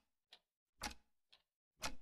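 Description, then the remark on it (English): A clock ticks steadily about once per second, alternating a light, short tick with a fuller, heavier tock. It is quiet and isolated, with silence between beats and no voices. “Well, I think you want to hear something other than that clock.”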